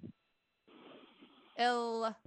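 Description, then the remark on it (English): A call-in show caller breathes into a microphone: soft, rough breath noise hisses for about a second, then a loud, steady voiced sound like a hum or groan follows briefly before cutting off. “Whoever's breathing in the mic, they had a question, have the IRS on liens and needs to phone in and look at something.”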